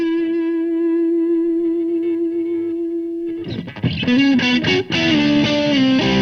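An electric guitar played through a small Marshall tube combo holds a single clean, sustained note, then breaks into loud, crunchy distorted chords with gritty overdrive for the last few seconds.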